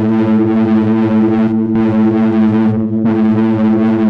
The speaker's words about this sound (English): Yeah, that's full distortion. It sounds awesome. Yeah, it's definitely got a kind of vibe to it, and it does sound much bigger than you'd expect.